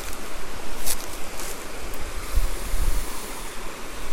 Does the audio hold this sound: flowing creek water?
yes